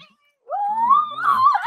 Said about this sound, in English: All right, we got the kitten here. It'll be my kitten now.